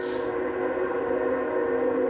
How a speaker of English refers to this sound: I forgot I was next to the train tracks. I'm around a lot of houses. It must suck to live this close to a train.